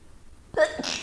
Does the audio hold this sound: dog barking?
no